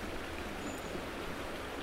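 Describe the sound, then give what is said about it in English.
Steady wash of water lapping at a riverbank among tall bulrushes at dawn, a continuous soft rushing hiss with no distinct splashes or pauses, heard alone without any voices. “I park the car by the roadside, step out and wander down amongst the tall bulrushes until I'm standing on the precipice with the water lapping up at my shoes.”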